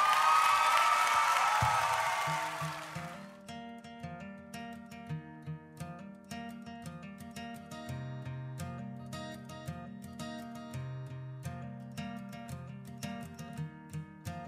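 A short burst of clapping and cheering opens loudly, then fades within a few seconds as steady, plucked-sounding music with a low bass line takes over.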